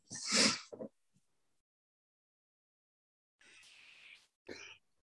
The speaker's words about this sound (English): My cat is like, he's like trying to scratch himself on the microphone. He's just like, his little tail is like going underneath. He's so rude.